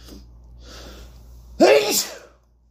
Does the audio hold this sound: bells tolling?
no